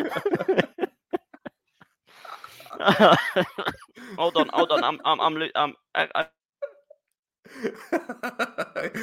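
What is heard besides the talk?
coughing fit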